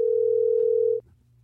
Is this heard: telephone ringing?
yes